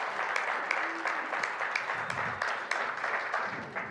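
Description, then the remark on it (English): A crowd applauds steadily to welcome a new executive pastor on stage, many hands clapping in a dense, continuous patter with occasional sharper claps standing out. The applause stays fairly even in loudness throughout, with no speech over it. “So yeah, round of applause for that.”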